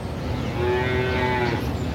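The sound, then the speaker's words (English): A cow on a farm along a scenic route near the Shawangunk Mountains gives one long, low, drawn-out moo lasting about a second, heard over a steady, fairly loud background rumble with no talking. “People come by constantly, stop, take pictures of the cows.”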